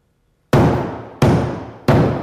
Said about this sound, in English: Where's the hammering coming from? Stop the hammering! Somebody go up there and stop that hammering! Call f***ing Ed Wilson if you have to! Stop the hammering!